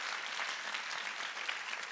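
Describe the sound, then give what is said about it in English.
A crowd applauds to thank God, many hands clapping in a dense, bright, even wash of sound that holds at a constant level throughout without any voices standing out. “Let's all clap and thank God for the power of his grace.”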